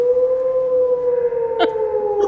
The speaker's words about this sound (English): It's almost pitch black. Even worse. Out in the dark. Yep, you're out in the mountains in the dark, and you hear wolves howling pretty close by.